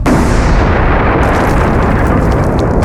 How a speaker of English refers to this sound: A deafening explosion thundered from behind them, urging them to follow Doran's direction.